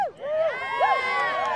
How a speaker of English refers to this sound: Oh, a big cheer from the ketchup contingent. They love ketchup so much, they add ketchup to their ketchup.